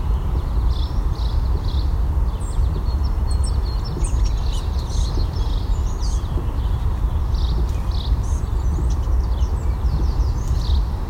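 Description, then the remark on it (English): Rapid, bubbly, rattling tick calls from small songbirds, blue-gray gnatcatchers and American redstarts that are fighting each other, come in scattered high bursts over a loud, steady low rumble. “Blue-gray gnatcatchers and a couple American red starts doing this bubbly ticking sound, rattly sound.”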